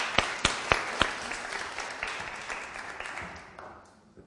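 An audience claps, opening with a few sharp, loud claps that blend into a dense patter of applause, which gradually thins and fades over about four seconds. No one speaks.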